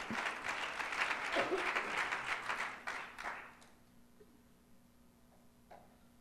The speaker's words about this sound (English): Give the Lord a hand clap of praise as you're seated this morning.